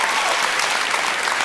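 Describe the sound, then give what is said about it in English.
A crowd cheers and claps at the PNE's wooden roller coaster, the oldest still operating in Canada, in a loud, dense, unbroken roar of many voices and hands that holds steady for the whole moment, with no single voice standing out. “Listen to the crowd.”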